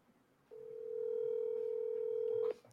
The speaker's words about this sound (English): We're going to call Tyler Henderson. FaceTime Tyler Henderson.